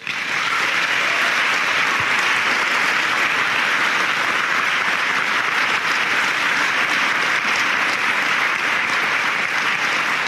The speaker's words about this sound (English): And I guess I would ask the seniors, we recognize the parents, I'd ask you to join me in a round of applause for your parents and your family. They're here to support you today.